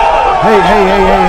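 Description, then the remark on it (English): A crowd claps and cheers over a steady wash of noise, with one voice rising into a sustained, wavering whoop that holds for about a second. “Yeah, sorry, that was everybody in the comments that were just clapping and raw.”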